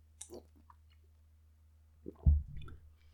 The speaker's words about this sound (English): A little sip.